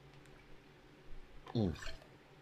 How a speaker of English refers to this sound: Sorry, I needed some water there.